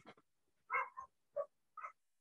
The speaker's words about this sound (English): Who's got a dog barking? It's me. Somebody's outside.